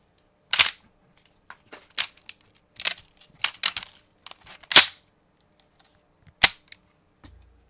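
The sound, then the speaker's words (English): The bolt of an M1D Garand Sniper Edition rifle is racked back and slammed forward with sharp metallic clacks, followed by a crisp trigger click and a few smaller mechanical ticks, with no one speaking. “That is the bolt being racked, slamming forward, and the trigger being pulled, folks.”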